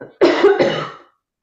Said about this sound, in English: One of the things, sorry, I'm going to cough.